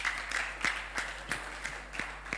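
A group of people claps together in a steady, even rhythm with no talking over them. They are clapping for a woman.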